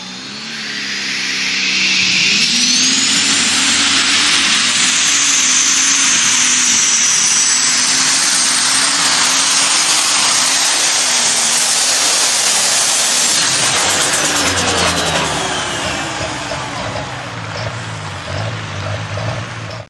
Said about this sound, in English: The tractor's name is Scrappy.